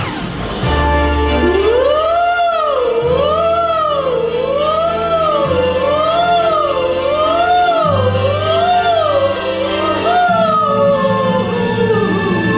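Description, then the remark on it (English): A fire engine siren from track 2 of an album, wails loudly and steadily, its pitch swooping up and down in about eight repeated cycles over a low, droning engine rumble. No one speaks. “Track 2 from ….”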